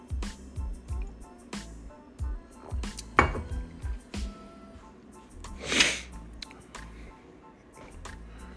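A couple of loud, breathy sniffs and a snort from a stuffy nose with a cold, sharp bursts between soft clinks and light tapping, with no talking.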